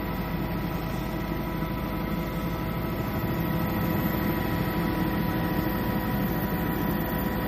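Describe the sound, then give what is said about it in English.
A helicopter during a 35-minute flight over impassable terrain, heard as a steady, dense engine and rotor drone with a deep low rumble that holds at a constant level throughout, with no voices. “Or a 35-minute helicopter flight.”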